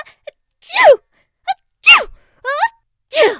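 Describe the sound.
A voice performs a series of about four sneezes in quick succession, each a sharp, breathy burst with a falling voiced tone, preceded by small catching breaths. The sneezes are close and fairly loud.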